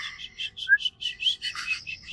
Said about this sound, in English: You have a sad, sad whistle.